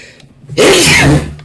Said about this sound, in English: I gotta sneeze. Hang on.